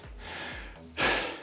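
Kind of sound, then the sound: human body sound, heavy breathing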